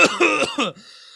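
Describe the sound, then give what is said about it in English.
A loud coughing fit after smoking Sour OG Kush cannabis: three or four harsh coughs in quick succession, then a brief, quieter wheezy trailing sound as the fit subsides. “I'm just going to cough for a while.”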